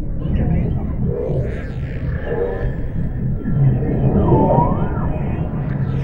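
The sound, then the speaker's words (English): Bearded seals calling underwater, picked up by underwater microphones: eerie, warbling tones that glide and sweep up and down, some looping trills, over a constant low rumbling wash of ocean noise. “Bearded seals coming out of the ether as though they were from the Martian Chronicles.”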